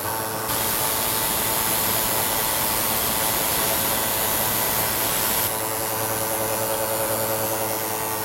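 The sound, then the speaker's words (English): A computer's paper tape punch runs steadily for about eight seconds, punching output onto paper tape for a student, a loud, continuous mechanical whir and hiss with a low hum underneath and no voices. “And a machine like this would actually punch the tape for the student.”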